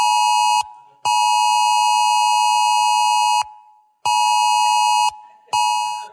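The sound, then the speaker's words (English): A phone's emergency alert tone blares loud and harsh, a buzzy electronic pitch sounding in long blasts broken by brief silent gaps, four bursts in all, with no voices. “It's a sound you don't like to hear, but it's a sound that says to us, danger, danger, danger.”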